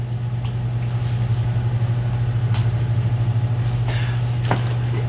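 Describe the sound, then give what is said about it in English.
A steady, low electrical hum drones without a break, with a faint rhythmic flutter and a few soft clicks over it, like a bathroom fan buzzing. “It might be my bathroom fan that's making the buzz.”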